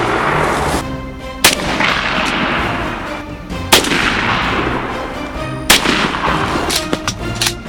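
Loud shotgun blasts from turkey hunting outdoors crack out at irregular intervals, about five in all, each followed by a rolling echo over a steady, dense background rumble. No one speaks.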